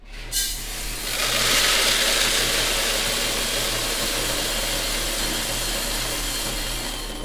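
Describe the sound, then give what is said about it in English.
Dozens of heavy trucks loaded with soybeans idle in line at a port entrance on the Mississippi River in Osceola, in a steady, low diesel rumble with a broad airy hiss, after a brief air-brake release near the start; no voices, just continuous engine drone. “There are dozens of trucks lined up at the port's entrance.”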